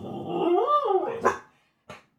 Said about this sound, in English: I'm not editing that out because what a dog noise. Wow. Like, that was Hall of Fame level dog noise on this show.